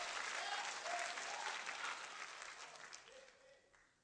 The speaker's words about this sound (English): Somebody clap your hands and shout.